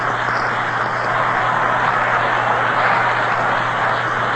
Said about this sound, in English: Listen to the crowd of applause for Selkirk.